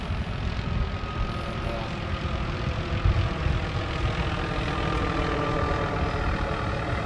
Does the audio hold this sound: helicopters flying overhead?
yes